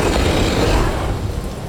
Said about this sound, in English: Clyde yelled as he unlocked the window and yanked up until it opened wide, rain and wind pouring in.